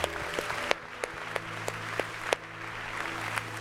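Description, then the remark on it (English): An audience at Westover Hills church claps together in a praise clap offering to the Lord, sustained applause with the many hands blending into a steady wash and a few sharper individual claps standing out, moderately loud. “Would you just give the Lord one more praise clap offering today?”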